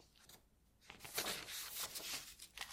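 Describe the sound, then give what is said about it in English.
Soft, crisp rustling of sheets of fresh paper being handled, a brief hush followed by a couple of seconds of uneven crinkling and sliding, fairly quiet with no talking. “I'll just get some fresh paper.”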